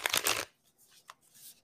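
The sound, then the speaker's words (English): A quick, loud riffle of a new Inner Child Healing oracle card deck being shuffled, followed by a few softer papery slides and taps as the deck settles. No one speaks. “I'm going to go ahead and pull one of my new oracle cards.”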